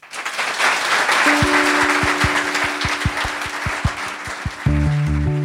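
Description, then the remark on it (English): A crowd claps steadily and fairly loudly, a dense wash of applause with some sharper thumps and a few resonant knocks mixed in toward the end. “With that, please give a huge round of applause”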